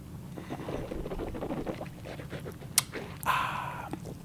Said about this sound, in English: And then the first sip that we take, you can always put it in the mouth and swish it around, cleanse the palate a little bit.